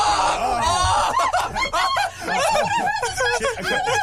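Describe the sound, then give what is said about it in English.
A woman yells and shrieks in fright at a massive snake from a reptile zoo, loud, with frantic swooping pitch and breathless, laugh-like bursts running almost continuously for about four seconds. “And I feel like just me yelling.”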